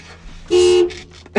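vehicle, car horn honking outside

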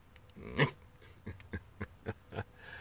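animal, neighbor's dog barking

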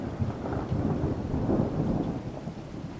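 nature, thunderstorm with rain

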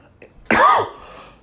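human body sound, cough

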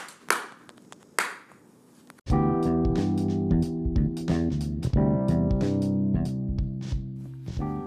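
human body sound, hand clapping

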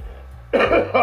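human body sound, cough

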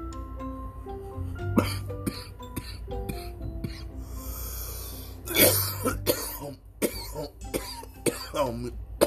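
human body sound, coughing

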